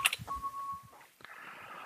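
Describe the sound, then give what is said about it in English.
Little electronic beeps: a couple of quick, high chirps, then a steady mid-pitched tone holding for about half a second, followed by a soft click and a low hiss. “Yeah, we're hearing a little beeps in the background, so we'll continue the conversation and keep it going.”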